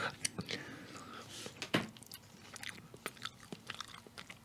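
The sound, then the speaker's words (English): Moist chewing of a soft mouthful of cream cheese, with wet smacking clicks and irregular squishy bursts, faint breathy sounds around it and no clear talking. “Chew. Just hit it, yep.”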